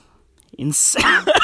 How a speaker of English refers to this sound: I'm coughing now.